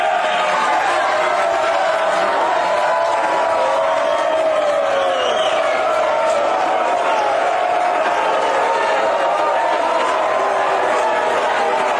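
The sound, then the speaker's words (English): A loud, restless crowd heckles and boos at Donald Trump Jr.'s launch event for his book Triggered with Charlie Kirk, a steady roar of jeering voices with occasional louder yells rising out of the noise for the full twelve seconds. “the event descended into madness pretty quickly with hectors and booing, and people weren't allowed to ask questions, which I guess made them annoyed as well.”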